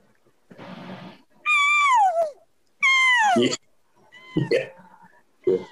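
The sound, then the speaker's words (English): A person imitates a cat's meow by using their lips to change tones, with two loud, drawn-out descending wails, followed by shorter vocal sounds, clear with brief pauses between. “They try to change tones by using their lips to create. And that's where you get that cat thing.”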